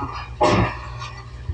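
A single sharp sneeze bursts out suddenly and fades within a moment, set against a low steady background hum. No one speaks.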